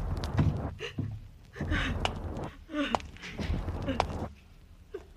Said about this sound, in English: And the only sound in the corridor is your footsteps. A sound that hurries toward pain.